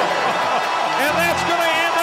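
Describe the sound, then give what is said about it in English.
A basketball arena crowd at an Illini game roars loudly and continuously after a long three-pointer goes in, a dense wall of cheering voices that holds steady for about two seconds, with a few individual shouts rising out of the din. “Listen to the roar!”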